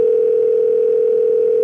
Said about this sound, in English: Let's give him a ring and see if he's answering his phone.